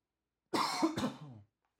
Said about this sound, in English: Sorry, I had a cough.